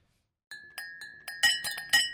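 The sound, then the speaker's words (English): Glasses clink together repeatedly in a steady rhythm as someone practices a holiday party toast, bright ringing taps that grow louder and busier toward the end, clear with no talking. “why are you clinking glasses?”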